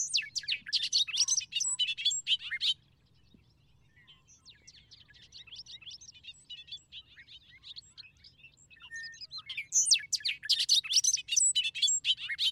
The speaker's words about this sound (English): The song of the bobolink, to me, expresses hilarity.